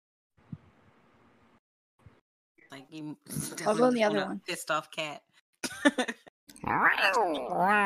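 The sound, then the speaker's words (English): A person mimics an angry cat, letting out loud, drawn-out yowls that waver up and down in pitch, broken into several bursts after a brief quiet start with a soft click. “Pissed off cat.”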